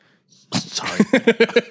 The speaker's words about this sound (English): Sorry. That just came out of nowhere. Wow. That's some good whiskey right there. No, that was smooth. That was having to sneeze and drink at the same time.